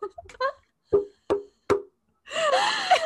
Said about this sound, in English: That's pretty empty in there. It's a bottle, not my head.